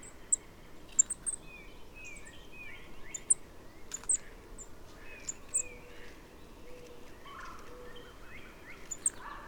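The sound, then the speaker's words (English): Thin, very high-pitched notes from a golden-crowned kinglet come in brief scattered bursts, faint against steady outdoor background noise of people in the neighborhood talking and yelling, with other lower bird calls mixed in. “a golden-crowned kinglet shows up. Listen for its high-pitched notes.”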